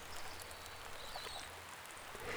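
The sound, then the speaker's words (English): Steady, soft patter of rain falling onto water in daylight, a continuous gentle hiss with faint scattered droplet splashes and a low rumble underneath, no voices. “And as you breathe in again, you notice how beautiful the rain is, dappling the water surface and shimmering in the daylight.”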